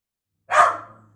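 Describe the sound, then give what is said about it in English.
A dog, Barney, lets out one sharp, loud bark, trailing off into a brief low rumble. No one is talking. “And Barney just lays there and growls and knows he can fuck with them.”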